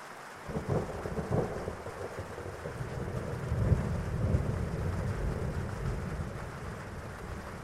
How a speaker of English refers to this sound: And in a moment, you'll be hearing some sounds of distant thunder. And each time you hear that sound, just allow yourself to relax a little bit more.